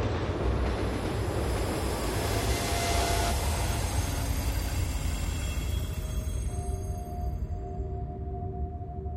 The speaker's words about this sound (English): as deafening as the screech of the train's brakes as it barreled into the station.